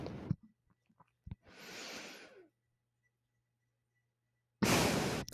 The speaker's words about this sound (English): Just breathing into the microphone.